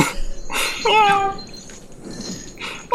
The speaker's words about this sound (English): Someone just stepped on a cat. Yeah. No, I don't like the cat noise. Cat noises scare me.